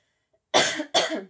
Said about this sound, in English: I'm going to cough. Sorry.